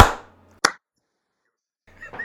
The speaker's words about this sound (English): that's why we're clapping, because we know the audio will be out of sync and you'll use the clap to sync it